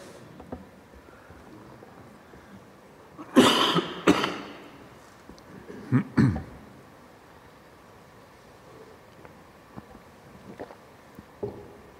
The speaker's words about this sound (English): Just take a few moments to consider those questions while I try and clear my throat.